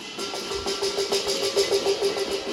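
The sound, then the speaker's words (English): A dense, continuous clatter of many pots and pans being banged at once by residents in Shanghai protesting a COVID-19 lockdown on 29 April 2022. Rapid overlapping metallic strikes sound over a steady ringing tone underneath, fairly loud throughout. “These are sounds of residents in Shanghai banging pots and pans to protest against COVID-19 lockdown.”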